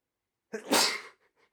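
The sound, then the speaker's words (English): A single sharp sneeze bursts out after a moment of silence, with a brief intake of breath before it and a couple of faint, soft sounds trailing after. “I just sneezed.”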